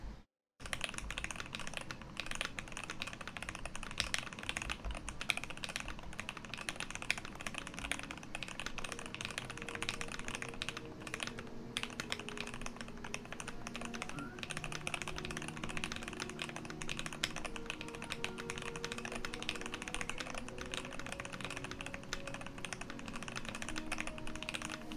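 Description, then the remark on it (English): Steady, fast typing on a mechanical keyboard with clear switches, producing dense hollow clacks, with soft background music playing underneath throughout. “Yeah, and I use clear switches here. Some say it's very hollow.”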